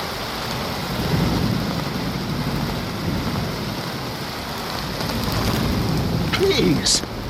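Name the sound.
heavy rain beating down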